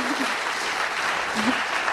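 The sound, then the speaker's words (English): A crowd claps steadily for about two seconds in praise of a good question, a dense, even wash of many hands with no break. Faint voices briefly sound beneath it. “Let's clap it up.”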